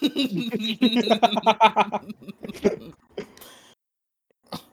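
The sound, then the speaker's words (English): A run of harsh, rapid coughs bursts out, hacking one after another, then trails off into a few scattered, weaker coughs and a final sharp one after a short pause. “Cough up your lung, fucking idiot.”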